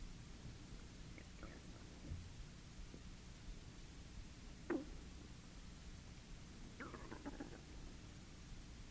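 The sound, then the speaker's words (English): Soft, steady rain hisses faintly and continuously in the background, with a couple of brief clicks or knocks breaking through partway. No one speaks. “Sounds, the rain, different sounds in the room, the bells.”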